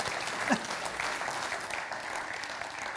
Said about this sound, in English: So let's give them another clap. Thank you.